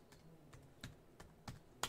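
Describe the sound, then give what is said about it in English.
Quiet keyboard typing as a prediction is typed in: a handful of separate key clacks at an uneven pace, ending on a slightly louder keystroke, with no talking. “We're typing it in.”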